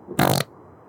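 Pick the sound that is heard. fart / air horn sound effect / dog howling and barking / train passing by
fart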